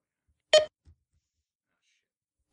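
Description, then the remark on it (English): Two short electronic beeps from a laptop, sounding about two seconds apart, fairly loud, with near silence between them apart from a faint low thump. “Is that you beeping? It's Tiny's laptop.”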